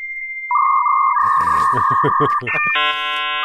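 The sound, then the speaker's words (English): A dial-up modem handshake as a computer places a phone call to an internet provider to connect to the internet: a thin steady tone gives way to a lower beep, then rhythmic crackling bursts of static, ending in a harsh layered screech of stacked electronic tones. “basically, it's making a phone call to your internet provider, which would take you to the place you wanted to go, the CompuServes and America Online's of the world.”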